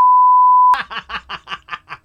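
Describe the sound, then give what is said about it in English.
A loud, steady censor bleep tone holds for under a second, then cuts off abruptly into a burst of rhythmic, pulsing laughter. “Who every 20 minutes goes beep, like, okay.”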